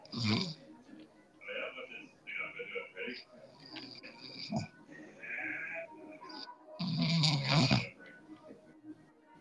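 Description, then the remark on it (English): Close, heavy breathing right against the microphone, rough and snore-like, rising and falling in uneven huffs, with a louder rustling burst near the end. “I can hear you breathing all in the mic.”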